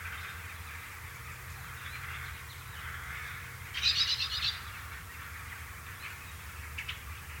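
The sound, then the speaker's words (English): A rookery of cawing rooks in an old wood, forming an autumn roost: a steady chorus of overlapping calls with one louder burst of harsh caws partway through. No one speaks. “As far as I can understand, there has been a rookery there for living memory.”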